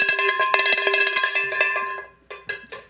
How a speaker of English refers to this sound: I'm gonna get the talking cowbell. Yeah. I do not want the cowbell.